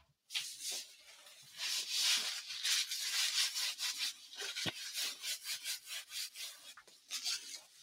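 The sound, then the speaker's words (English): A harsh, scratchy sanding or rasping noise scrapes back and forth in steady, repeated strokes, fairly loud, with no talking over it. “What are you, sanding something?”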